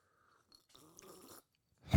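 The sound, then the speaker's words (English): A soft slurping sip of Wild Turkey 101 whiskey mixed with elderberry, turmeric and honey syrup, lasting under a second, followed by a brief louder rustle or bump at the end; no one speaks. “I'm going to take a sip.”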